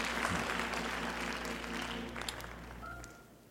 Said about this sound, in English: Look at somebody before you sit down and say, embrace the process. Clap your hands as you take your seat.